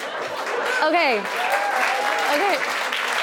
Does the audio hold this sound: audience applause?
yes